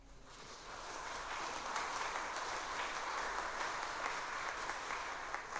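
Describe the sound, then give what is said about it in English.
An audience at a Sunday church service in Fort Smith breaks into applause for a departing preacher, a dense, steady wash of many hands clapping that swells in the first second and holds at an even level for several seconds, with no voices over it. “They almost never clap for anything.”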